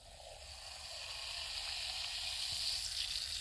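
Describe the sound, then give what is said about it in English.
Very carbonated soda fizzing in a cup it has just been poured into, a steady crackling hiss of tiny popping bubbles that swells slightly louder over a few seconds, with no talking. “That's a lot of fizz. It's very carbonated.”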